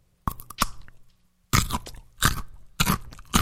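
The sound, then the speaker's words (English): Crisp bites into a crunchy, sweet Texas carrot from Red Rock followed by loud chewing, with a few sharp crunches arriving in bursts separated by brief pauses and no talking. “So you have a crunchy carrot.”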